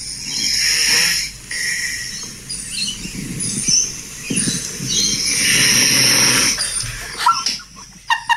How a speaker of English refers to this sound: You can just hear me snoring. Like, listen to this. It is a guttural snore. Yeah, I really go for it.